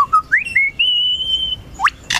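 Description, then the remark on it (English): A lyrebird in a forest mimics a camera shutter, clear: a run of bright whistled notes sliding upward into a sustained tone, then a quick rising chirp and a sharp, noisy click at the end. “That was a camera shutter.”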